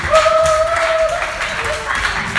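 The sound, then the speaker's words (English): An audience applauds the actors after a performance of the story of Gideon, in a dense, steady wash of many hands clapping at once, with a sustained cheering voice or whistle held above the clapping for a moment. “We give our actors a very big round of applause.”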